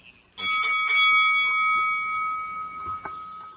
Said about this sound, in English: Bells of mindfulness, those were.